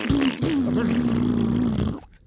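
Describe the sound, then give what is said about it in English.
A voice imitates a loud fart: one long, buzzy, steady-pitched blast lasting about two seconds after a brief sputter, then cut off abruptly. “Rob Riggle farts loud.”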